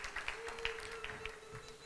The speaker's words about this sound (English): You all, give yourselves a hand clap. You're here today.